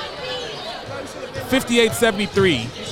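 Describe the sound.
A basketball bounces a few times on a hardwood court amid steady arena crowd noise, with a voice talking over the dribbles.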